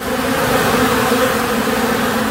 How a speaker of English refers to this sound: There's a little less buzz in this hive.